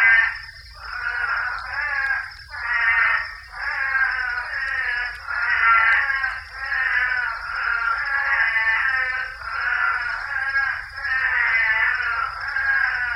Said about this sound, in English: This was recorded at the Saguaro National Park, very close to here, in Arizona. And this is what the Couch's Spadefoot Toad sounds like.